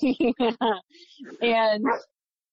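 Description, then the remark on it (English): A dog barks four times in a quick, even burst, then lets out a longer, drawn-out whining bark after a short pause; the barking is loud. “Sorry, my dog is barking.”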